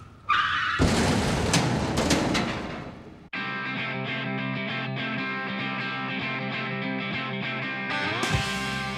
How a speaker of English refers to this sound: Love it. Partly because they actually crashed the drummer's car.